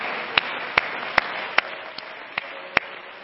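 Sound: audience clapping hands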